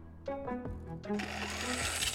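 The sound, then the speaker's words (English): A plugged-in electric garden trimmer (weed whacker) buzzes to life with a humming motor whine that shifts pitch in short bursts, then settles into a louder, harsher, rattling drone. No one speaks. “Okay, I've got it plugged in. Let's try it. I'm just gonna give it a buzz.”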